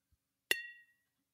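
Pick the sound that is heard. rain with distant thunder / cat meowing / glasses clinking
glasses clinking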